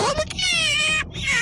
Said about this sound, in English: There's Mooch. Meow. Where's the cat noise? Where's the cat? The cat button. Mooch goes. Meow.